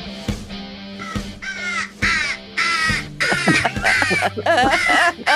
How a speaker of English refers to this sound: They're coming. They're coming. Here they come. There's the crows.